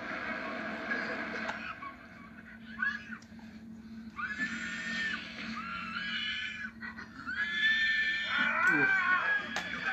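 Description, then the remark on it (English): A woman's high, piercing screams come in several drawn-out, wavering bursts, loud, with a shrill squealing quality that sounds almost like a pig. “She's screaming. I thought that was a pig for a second.”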